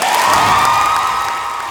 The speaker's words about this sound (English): Let's give one big massive applause for the class of 2018.